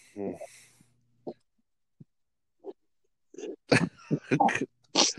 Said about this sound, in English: God, I can't cough forever. I'm full of the night's congestion.